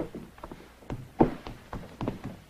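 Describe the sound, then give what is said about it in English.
Footsteps of the First Lady walking around the White House in a comedy sketch, looking for her forgotten camera: a string of dull, irregular thuds, about eight steps at an unhurried pace, moderately loud with no voices. “Because we just hear her footsteps walking around the house for a long time.”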